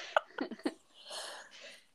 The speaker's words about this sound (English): Excuse me. I laughed so hard. I just yawned.